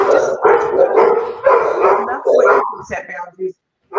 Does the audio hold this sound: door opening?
no